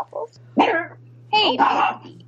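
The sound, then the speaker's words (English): A dog barks a few times in quick, yappy bursts over a faint steady electrical hum. “And it's William Waffles.”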